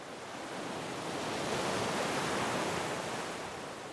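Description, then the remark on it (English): Ocean surf washes onto a beach in a steady, rushing roar that swells gently toward the middle and eases off again, with no voices over it. “The sound of waves crash up on the beach”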